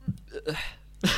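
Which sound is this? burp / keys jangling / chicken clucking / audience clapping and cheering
burp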